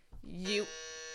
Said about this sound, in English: What was that? It says game, so I wanted to see what it was. Okay. It's a game buzzer.